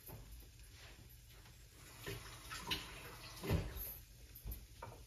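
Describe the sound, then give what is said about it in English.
Unheated water pours into a pot of dal in a steady splashing stream, swelling and easing with a few louder gurgles and clinks, with no one speaking. “Now to that dal, I'm going to add some water.”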